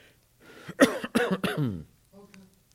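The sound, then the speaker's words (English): A short run of loud coughs and throat clearing, three sharp bursts in quick succession followed by a softer, lower clearing sound, with no words spoken. “Whenever I cough, he always asks me if I'm okay.”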